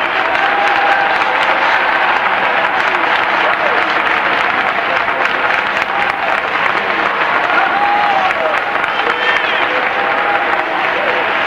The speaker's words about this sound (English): Somebody clap their hands and shout unto the Lord.